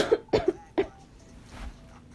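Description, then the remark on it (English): A person who has been coughing up blood gives a quick burst of three or four harsh coughs in close succession, fairly loud, followed by quiet background with no talking. “I'm gonna wake up, it's gonna be all blood stains on me because I've been coughing up blood.”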